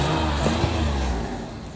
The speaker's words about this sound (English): That was the worst rev I've ever heard. If you're gonna rev, at least do it properly.